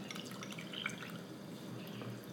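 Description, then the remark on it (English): Water trickles and drips into a container with a few soft splashes and faint wet clinks as water and about a third cup of cooked oatmeal are added to a starter, quiet, with no one talking. “So here I have, maybe a third cup of cooked oatmeal. So I'll add it, as well as water.”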